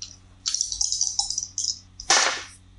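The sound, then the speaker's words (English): Two dice, rolled for a roll at disadvantage in a game, clatter and tumble across a hard surface in a quick run of bright, rattling clicks, ending with a sharper clack as they settle. No one speaks. “It is a disadvantage, so you have to roll 2 dice.”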